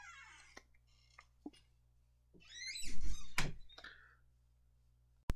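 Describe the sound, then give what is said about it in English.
A heavy, dull door thump as a cat comes into a bedroom rises out of a quiet room hum, surrounded by a few sharp knocks and clicks, with one more abrupt click right at the end. “Sorry about that, my cat came to my room.”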